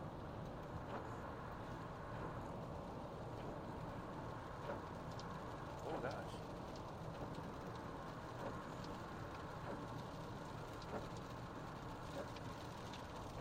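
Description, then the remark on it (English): Steady, dense rain drums on a moving car over a constant low road rumble, with occasional sharper splashes and ticks breaking through the continuous wash of noise, as the rain grows heavier. “Yeah, right there, you can hear that rain getting worse.”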